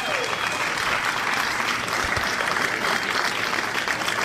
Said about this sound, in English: Huge round of applause, Mr. Paul Schaefer.